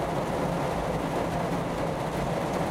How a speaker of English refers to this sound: Raining really hard now. I hope that somebody's listening to this and they find the rain very, very relaxing.